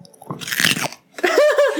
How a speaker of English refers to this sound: Nice crunch for all y'all.